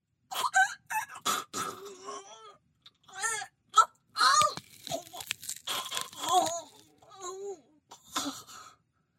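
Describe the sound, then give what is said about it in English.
A sound effect made with celery sticks, gasping and choking: wet crunching and snapping of celery being twisted, mixed with strained gasps, choking gurgles and groans, loud in irregular bursts with brief pauses. “And I really was excited to have that same reaction when I heard the sound effects that I created with the celery and the gasping and the choking.”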